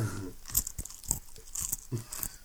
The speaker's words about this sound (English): Crunch. Crunch those pretzels. Yes, I'm still recording. Why? Crunch those pretzels. Rustle the bag.